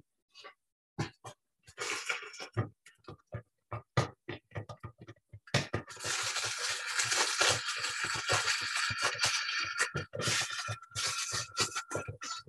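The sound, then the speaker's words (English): Rain begins as scattered, crackly pattering drops, then swells into a loud, steady hiss of downpour for several seconds before easing back to sparse, irregular taps. No one speaks. “Oh, it sounds like the rain.”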